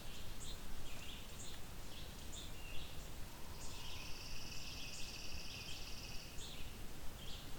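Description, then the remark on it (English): A chipping sparrow or pine warbler gives a steady, dry trill lasting a few seconds over soft outdoor ambience, with scattered high chirps before it. “That would be chipping or pine warbler.”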